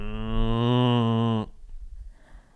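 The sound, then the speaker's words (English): A person imitates a cow with one long, steady, loud moo lasting about a second and a half, then it cuts off abruptly into quiet room noise. “Can you do an impression of a cow?”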